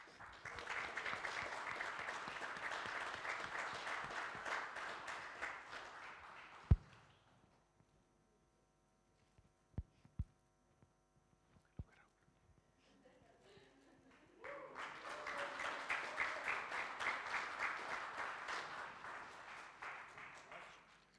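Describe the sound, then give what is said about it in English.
A crowd claps steadily for several seconds for a boy receiving a Boys' Brigade certificate and badge, falls quiet through a pause broken by a few sharp knocks, then bursts into sustained applause again. “Give him again a big applause.”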